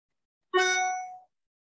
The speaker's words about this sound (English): Welcoming the beeps. My mind may not like the beep, but deep down, there's that awareness that is like, welcome, the cloud of the beep.